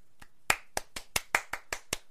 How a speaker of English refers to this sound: I'm doing a slow clap. Oh, this is, yeah, this is the hero clap.